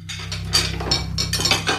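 Metal utensils clatter and clink as they are grabbed from a kitchen drawer, a quick jumble of bright, jangling hits over a steady low hum.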